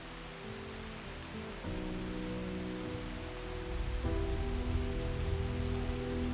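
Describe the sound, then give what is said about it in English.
Steady rain falls in a continuous hiss, even, while low sustained musical tones shift chords underneath. No one speaks. “Day or night, it rains in Dice City. Heavy rain or light drizzle, you can't tell the time.”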